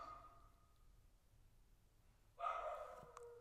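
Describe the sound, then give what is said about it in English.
A pet dog barks, one drawn-out, fairly faint bark after a quiet stretch, with no one talking. “My dog is barking.”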